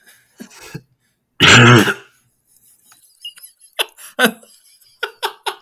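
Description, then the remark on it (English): A single loud, harsh cough bursts out, followed by quieter throat clearing and a few scattered soft clicks and squeaks. “I love the cough.”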